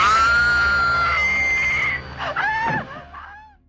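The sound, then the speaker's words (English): A loud, piercing horror-movie scream, held long and shrill at one pitch, then jumping higher before breaking into shorter, wavering cries that fade out near the end. “And then a screaming release.”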